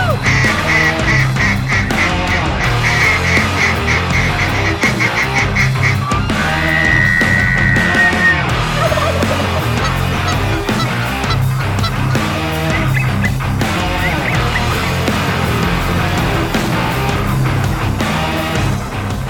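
A large flock of geese honks loudly and continuously over decoys, their nasal calls overlapping into a dense, busy chorus for the whole stretch, with no talking.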